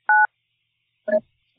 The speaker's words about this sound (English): I'm hanging up the phone. Here we go. I'm hanging up. Bye.